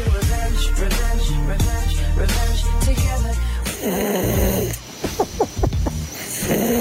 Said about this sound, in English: That's me snoring, is it?